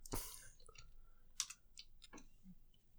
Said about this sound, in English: get on the computer. But you don't like my typing.